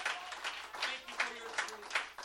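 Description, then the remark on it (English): A church audience in West Hartford gives the Lord a round of applause, a dense wash of clapping that swells in regular surges roughly every half second, with scattered voices calling out underneath. “Can we give the Lord just one more big round of applause?”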